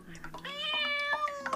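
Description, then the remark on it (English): A cat that has walked right in lets out one long, drawn-out meow, fairly loud, rising then holding its pitch, with a faint human voice murmuring briefly at the very start. “The characterful cat that walked right in.”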